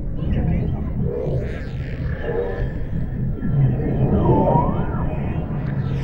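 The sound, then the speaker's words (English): Bearded seals calling underwater, recorded on underwater microphones: eerie swooping and warbling tones that rise and fall over a dense, steady low rumble, with several overlapping calls across the whole stretch. “Bearded seals coming out of the ether as though they were from the Martian Chronicles.”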